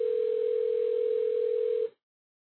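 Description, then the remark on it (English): A telephone ring tone sounds once as a steady, unbroken electronic hum lasting about two seconds, then cuts off abruptly into silence. No one speaks. “The next thing you hear should be a telephone ringing.”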